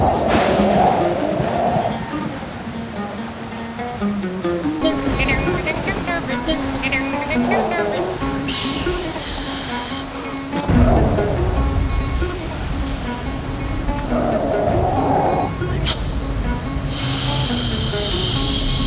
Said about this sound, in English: Suddenly, the wind is blowing really hard. There's thunder and lightning, rain.